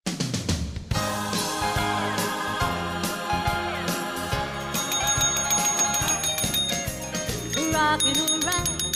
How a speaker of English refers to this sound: We're not ringing our bells because it's Christmas. We're ringing our bells